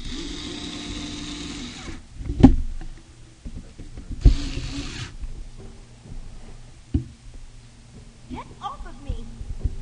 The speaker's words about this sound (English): Get off of him. That was the Blu-ray laser talking to you, saying get off of him.